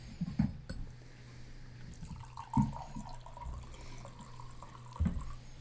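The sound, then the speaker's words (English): White wine, a blend from Modesto, California, is poured into glasses in a steady trickle, its pitch gently rising as each glass fills, with a few soft knocks and clinks along the way and no talking. “Where she's pouring, are we starting with everybody's week?”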